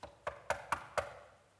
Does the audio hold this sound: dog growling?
no